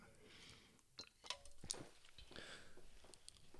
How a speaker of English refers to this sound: So, I'll take a real quick sip.